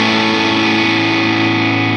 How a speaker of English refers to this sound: I love that. Yeah. I just got this pedal. I've been having overdrive and distortion issues since 2012.